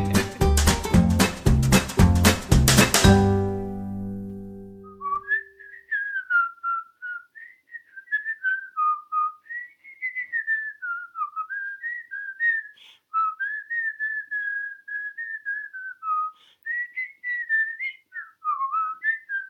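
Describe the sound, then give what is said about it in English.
A solo whistled tune of "We Wish You a Merry Christmas", steady and mid-pitched with lilting phrases, preceded by a few seconds of loud, dense chords that ring out and fade. “That was our rendition of We Wish You a Merry Christmas.”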